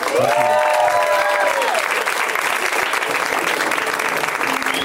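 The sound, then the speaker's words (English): Sustained audience applause for a comedian, dense and steady clapping from a large crowd, with a few brief cheers and whistles rising over it near the start. “Keep it going for Roman F, everybody. Give it up for him.”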